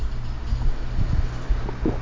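A portable rolling air conditioner, bought several years ago and sitting on boxes of Braille paper, just switched on and running with a steady, low droning hum under a constant airy whoosh, with a few faint bumps and rattles breaking through. No one speaks.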